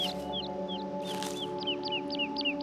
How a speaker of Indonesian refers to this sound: Langkah demi langkah mengarungi belantara yang hening. Hanya ada suara kicauan burung.